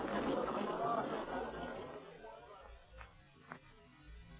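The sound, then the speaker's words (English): A dense murmur of crowd chatter at the scene of a fire where a roof caved in fills the first couple of seconds, then thins out and fades, leaving a quieter hum broken by two brief soft knocks. “We must get Clint out of this crowd.”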